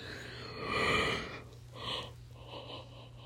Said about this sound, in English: Sorry, it's a yawn.